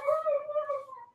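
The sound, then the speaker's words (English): A single drawn-out dog howl, steady and tonal, holding its pitch before sliding slightly lower and fading at the end. It stands alone without talk. “I think even the dog had issues with this.”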